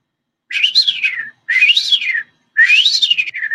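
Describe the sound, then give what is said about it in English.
Three rising-and-falling whistled phrases, each about a second long with short gaps, a person imitating a bird call. Clear and close, with no talking over it. “"You know they make bird sounds, right?" And I was like, "Bird sounds?" And as soon as I said that, from behind us, all you hear is, I'll see if I can whistle it.”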